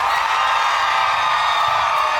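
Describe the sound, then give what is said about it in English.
A crowd of women in an audience scream and cheer together on a count of three, in one loud, sustained, high-pitched burst that holds steady for a couple of seconds without pause. “At a count of three, ladies, scream.”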